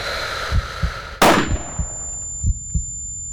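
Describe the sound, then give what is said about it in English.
A single loud rifle shot, fired at a buck deer, cracks out over a slow, steady heartbeat thump, its blast fading away into a thin, high-pitched ringing tone that lingers while the heartbeat continues. “When his father tapped his leg, Celio pulled the trigger.”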